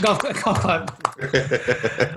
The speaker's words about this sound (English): All right. Solid work, everyone. Golf clap.